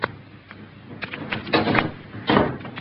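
A door is pushed shut nearby, with a few scraping, rattling bursts of handling before a firmer clunk near the end. There is no talking, just quiet room tone.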